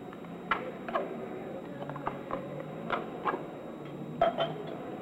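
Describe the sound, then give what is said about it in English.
Cold beer is poured from a can into a glass: a steady, soft fizzing wash broken by several light clinks and taps of metal on glass, fairly quiet overall. “Never could drink it out of a can. Seems to taste better in a glass.”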